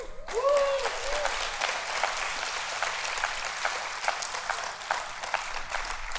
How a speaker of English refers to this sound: Now you need to clap for her because I've been her burden to bear.